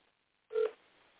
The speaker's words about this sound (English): Let's see if he answers the phone.